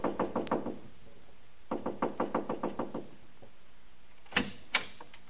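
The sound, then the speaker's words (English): Repeated knocking on a house door, fairly loud: a quick run of raps, a pause, then a longer steady series, followed by two sharper, louder knocks. Nobody speaks. “So I just kept knocking and knocking.”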